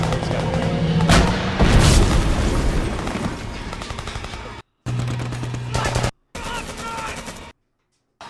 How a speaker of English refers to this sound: Yeah, we can have, like, explosions and special effects.